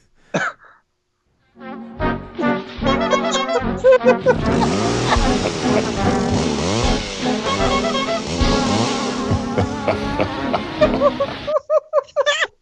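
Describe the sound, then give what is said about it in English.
A devil laugh sound effect, used as an intro for creepy clown stories: layered, growling vocal tones swell into a dense, eerie wash, then break into a short run of loud, rhythmic laughing bursts at the end. “No, I forget where I got it from, but it's supposed to be like a devil laugh.”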